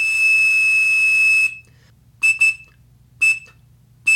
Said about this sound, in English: he could generate a tone at precisely 2600 hertz, which was a command tone for AT&T, actually Mob Bell at the time, voice telephone systems. And he could make free long-distance calls that way. And it even sounds almost like those Quindar tones.